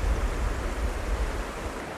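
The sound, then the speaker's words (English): Steady rushing water flows continuously, a broad, even wash of noise with a low rumble underneath, like a river running over stones, with no voices; a river in Limerick during a nymph fly-fishing session. “Nymphing Session on a Limerick river”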